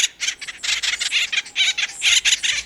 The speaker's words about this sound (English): The cartoon Woody was an imp, but the acorn woodpecker is an industrious bird.